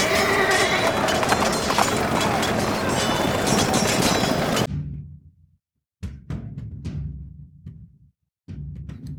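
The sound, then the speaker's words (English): After several seconds of dense, loud, rushing noise, horse hooves clip-clop in a few sharp, uneven strikes separated by brief pauses, distinct. “Bring my horse.”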